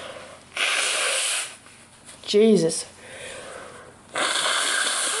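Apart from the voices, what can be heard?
blowing nose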